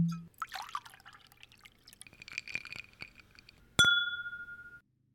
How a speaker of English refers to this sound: Let's... chin chin. Yay, cheers. So let's fill up and talk about Doctor Who.